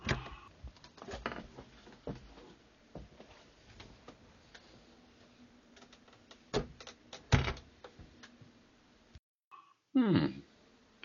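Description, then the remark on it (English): A door is worked open with rattling clicks and handle noises, a sharp knock midway, then a short creaking squeak near the end after a brief pause. Fairly quiet, no talking. “Ah, a door. This should not be any issue of a man of my size.”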